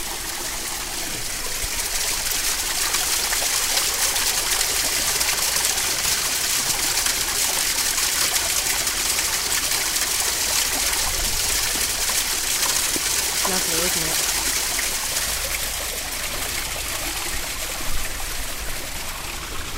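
Steady, clear spring water pours and splashes continuously from a stone channel stained bright orange by red iron deposits, flowing on into a pool in an even, stream-like rush with no pauses for the full length.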